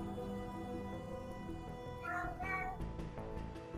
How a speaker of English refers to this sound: We do find a cat.